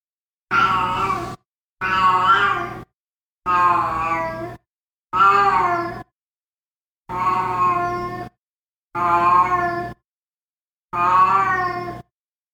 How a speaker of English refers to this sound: The GarageBand loops I chose today are Cats Meow 01, 02, 03, 04, and 05.